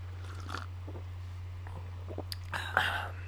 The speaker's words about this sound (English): Did you hear my swallow sounds? I did. You Very really loud. You really ASMR'd that through.